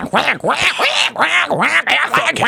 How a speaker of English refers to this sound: There's some ducks over there. Oh, ducks. Oh, ducks. Yeah, let's get some ducks.